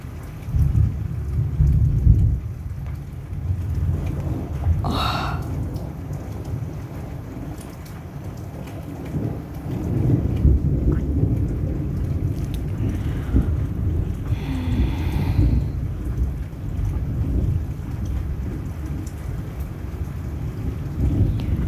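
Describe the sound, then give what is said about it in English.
Heavy rain pours steadily while deep thunder rumbles and rolls several times, swelling around the middle and again later, with gusts of wind buffeting the microphone. Lightning flashes during the storm. No one speaks. “I just saw the lightning and they're so beautiful.”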